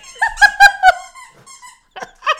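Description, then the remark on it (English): A dog named Charlie squeaks his squeaky toy: a burst of loud, high-pitched squeals in quick succession, fainter squeaks trailing off, then two more sharp squeaks after a brief pause. No one speaks. “Charlie's playing with his toys. I can't hear it. Charlie! Oh, you can't? Oh, now I can. He's squeaking his...”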